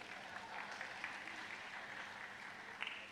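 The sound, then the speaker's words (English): An audience claps steadily together, a dense, continuous wash of hand claps with a few sharper accents near the end, with no one speaking over it. “Clap for me.”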